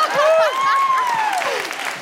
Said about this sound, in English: Every time Leyla Hussein speaks, she gets a round of applause.